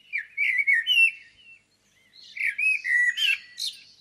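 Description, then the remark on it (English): A blackbird (Turdus) sings two rich, fluting phrases separated by a short pause, each ending in higher twittering notes, clear with no voices. “Number one on Mark's list is the blackbird, my favourite bird overall because I love the Latin name, turdus.”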